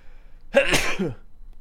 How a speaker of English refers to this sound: Sneeze.